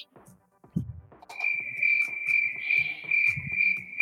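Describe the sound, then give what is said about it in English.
A steady, high-pitched cricket trill starts after a brief moment and keeps going continuously, fairly loud, with some low thumps and faint rustling underneath. “Crickets, boy. It gets silent, y'all.”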